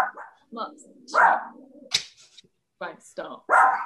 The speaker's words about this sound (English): Sorry, now my dog is barking because that's all right.